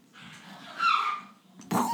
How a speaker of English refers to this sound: I didn't say that. That was dogs. That was the dogs attacking each other. Yeah, we have dogs here.